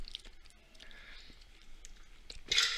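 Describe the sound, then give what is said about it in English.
Ice from a glass of whiskey and water being crunched between the teeth: a run of crisp, brittle cracks and clicks, growing into a loud, bright burst of crunching at the end, with no talking. “How's that ice? I love ice.”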